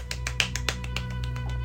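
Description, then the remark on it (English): A quick, steady run of light knocks on wood, around ten sharp taps in under two seconds, over a low constant hum with no talking. “Immediately knocking on wood.”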